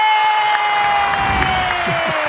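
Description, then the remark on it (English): A crowd cheers and claps loudly and continuously, with a dense wash of whoops and shouts over a steady patter of hand claps, plus a faint sustained tone gliding slightly downward. “You guys are great with your clap machine.”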